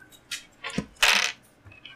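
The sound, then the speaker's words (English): Dice from a tabletop game spill and scatter across a hard floor toward a couch in a few quick bursts of bright clattering, loudest in the middle, then trailing off into scattered light ticks. “There goes all that. Dice. Come over here, couch. Dice.”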